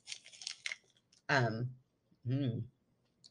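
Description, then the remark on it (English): A crisp burst of crunching and chewing as someone bites into a crunchy popsicle, lasting about a second, followed by two short voiced murmurs. “Okay, I feel like we need to both take a bite of our popsicle so I can edit it out because it's crunchy.”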